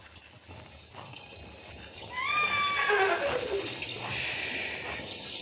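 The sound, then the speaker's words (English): Steady rain hisses throughout, a dense, even wash of noise, while a horse lets out a descending whinny partway through before the downpour carries on alone. “Haven't you enough sense to come in out of the rain?”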